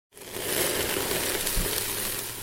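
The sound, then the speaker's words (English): Elk burgers, made from elk from Jackson, sizzle on a grill at a house in the mountains just outside Santa Barbara, California. It is a steady, dense crackling hiss with fine popping that starts abruptly and holds at an even level throughout, with no voices. “He's grilling up some elk burgers.”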